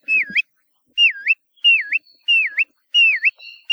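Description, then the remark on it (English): A bristle-thighed curlew (kioea), a Hawaiian shorebird with a long, downward-curved bill, gives five clear, loud whistled calls in steady succession, each a quick dip-and-rise note, with short silent gaps between them and no other sounds. “If you see a bird near the shore with a really long, downward curved bill, with a call that's been described as sounding like whistles of an adoring pursuer, you're probably looking at a kioea.”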